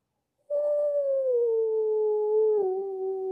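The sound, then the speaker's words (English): A person imitates a wolf howl with one long, steady voiced wail that slides gradually downward in pitch and holds for about three seconds, with a slight wobble near the end. “That's my failed attempt of howling like a wolf.”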